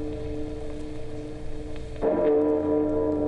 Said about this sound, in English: The Memphis Belle, Geronimo, Wild Bull, the Fighting Lady, and the ceremonious pealing of Big Ben.